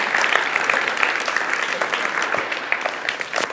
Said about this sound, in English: Y'all ought to clap your hands and give God praise.